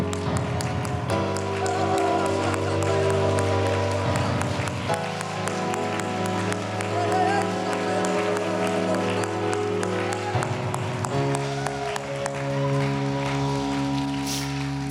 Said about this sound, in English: Oh, if you believe that, clap your hands unto the Lord. Oh, Jesus.